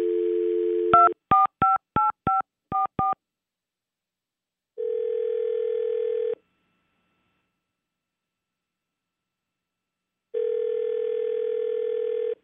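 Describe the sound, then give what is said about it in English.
A steady dial tone gives way to a quick run of seven touch-tone beeps as a number is dialed for a call on radio station 95.1 WAPE, followed by two long ringback tones separated by silence. No voices are heard. “well, we are going to call him right now.”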